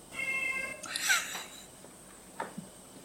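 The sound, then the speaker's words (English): A cat meows a couple of times, a drawn-out cry followed by a shorter, fainter one, quiet against a still background with no talking. “Okay, now the other cat is meowing.”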